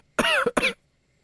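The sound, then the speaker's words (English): A sharp two-part sneeze: a loud, voiced burst followed at once by a shorter second burst, then silence, with no talking around it. “Gesundheit.”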